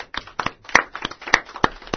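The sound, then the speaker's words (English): A brief round of applause from a small group for a class, with a few people clapping at an uneven pace; sharp claps overlap loosely for about two seconds, and no one speaks. “Let's give each and every one of you a round of applause.”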